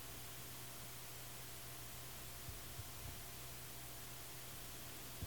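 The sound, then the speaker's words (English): A steady, faint background hiss runs unbroken through the whole stretch, with lots of fans running, a low electrical hum beneath it and a few tiny clicks. No one speaks. “is hearing a slight hiss, but it's noisy”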